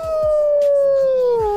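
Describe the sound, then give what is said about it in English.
A wolf lets out a single loud, sustained howl, held steady for over a second before sliding down in pitch at the end, unaccompanied by any talking. “Okay, that last one sounds sort of ill. That wolf sounds...”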